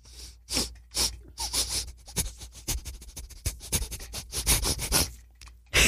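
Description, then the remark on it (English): A series of short, breathy sniffs through the nose, some quick and clustered, others spaced apart, with faint rustling in between and no talking. “I'll smell it again.”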